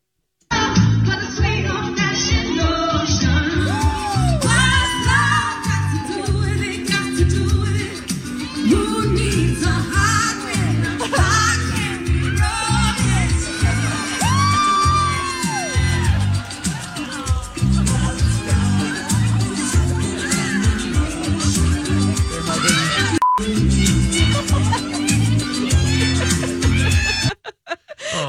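A woman sings a pop song at close range, loud and continuous for nearly half a minute, while a lively crowd around her laughs and cheers throughout.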